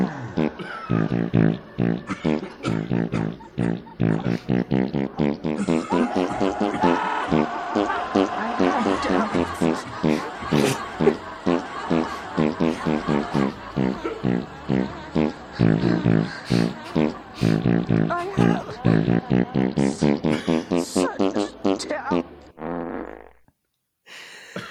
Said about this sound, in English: There is absolutely no way you played that entire thing on a sequenced fart sound, right? Did you get them in like different notes for the farts? Okay, so I got this keyboard, right? So all you do is you put a fart on one of the keys, yeah,